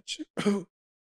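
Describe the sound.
A voice imitates a sneeze: a short breathy, hissy intake followed by a louder voiced "choo" burst, about half a second in all and then silence.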